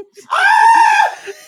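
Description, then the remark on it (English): A single loud scream of mock amazement at a magic trick rings out for about a second, a voice playfully acting astonished, rising sharply and then cutting off. “You scream, it's whoever did the magic trick.”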